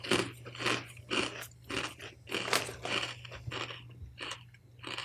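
Loud crunching of salty, slightly peppery kettle-style potato chips being eaten, a steady series of sharp, crackly bites and chews repeating about twice a second over a faint low hum, with no talking.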